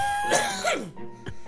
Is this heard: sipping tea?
no